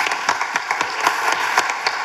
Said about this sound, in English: Let's give them an applause.